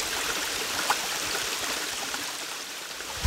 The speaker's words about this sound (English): This is a little creek that runs right through … childhood home.